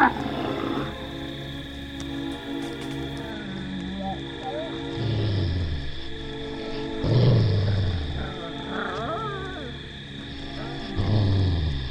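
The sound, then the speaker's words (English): A pack of wild wolves snarls and growls in several deep, rumbling bursts over a steady droning background that runs throughout. “this angelic apparition was in reality a pack of wild wolves.”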